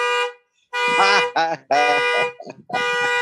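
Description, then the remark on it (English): A car alarm, set off when keys in a pocket knocked against the bar of a chair, blares in loud, harsh tonal bursts with short gaps between them, the pitch shifting from one burst to the next, while a voice talks over part of it. “That's, oh shit. Sorry. That's my car.”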